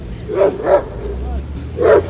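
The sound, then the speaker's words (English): A dog barks sharply three times at dogs walking by, two quick barks in a row, then a short pause before a third, loud over a low background rumble. “No, he just has a problem when dogs walk by him.”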